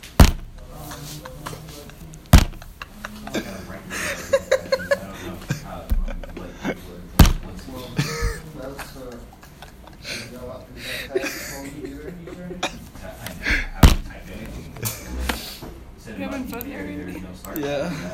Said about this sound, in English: I was just laughing at how many times you slammed like that.